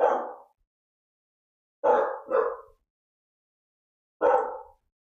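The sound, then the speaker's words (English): The speaker's dogs bark four times with pauses between: a single bark, then a quick double bark, then one more. The barks are sharp, with no talking. “oh my God, why are my dogs barking?”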